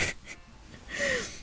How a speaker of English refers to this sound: Wait, I gotta yawn. Sorry.